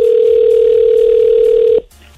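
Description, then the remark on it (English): A loud, steady telephone line tone hums for almost two seconds as a call is placed to a radio contest qualifier at 8:10 in the morning, then cuts off abruptly, leaving only faint background hiss. No one speaks. “So let's call this morning's qualifier.”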